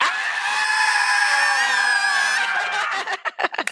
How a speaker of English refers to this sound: I want you to put your arms in the air, and then I want you to scream as loud as possible on three. One, two, three.